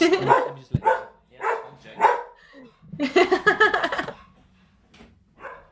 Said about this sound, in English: My dog is barking. I think the door's gone.